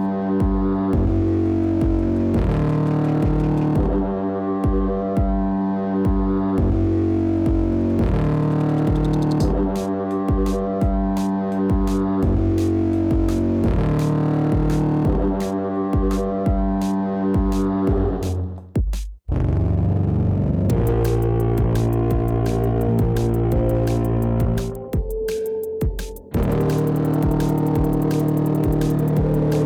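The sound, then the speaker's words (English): A full band plays steadily and loudly, driven by a thick, gritty, intentionally fuzz-distorted bass line under dense guitars and drums, with a brief drop near the end before the groove kicks back in. “Intentional distortion on the bass as well.”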